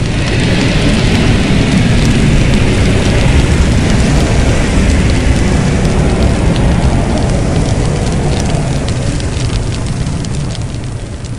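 A loud, fiery roar like a fireball blast, fire belched from a mouth exploding into a fireball in a role-playing game scene: a dense rumbling rush of air and crackling hiss that holds steady for about eleven seconds before easing slightly at the end, with no voices.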